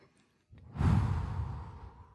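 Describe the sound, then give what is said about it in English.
A single deep, dramatic inhale, swelling quickly into a loud, airy rush that slowly tapers off over about a second and a half, with no talking. “That's a good breathing.”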